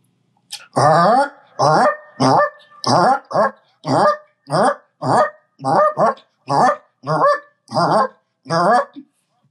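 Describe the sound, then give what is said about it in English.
A person in a hotel room imitates a Canada goose, giving a loud series of about a dozen nasal honks in a quick, steady rhythm with no other talking. “So the goose call. Give us the goose call.”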